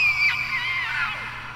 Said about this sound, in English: And as she is explaining this, they hear the sounds of screams of children being cut down.